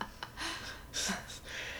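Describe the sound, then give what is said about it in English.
A pit bull named Zephyr snoring in soft, raspy breaths, several airy snorts following one another in a loose rhythm, quiet with no talking. “She's projecting her snores this way.”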